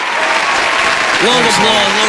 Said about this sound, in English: Long applause.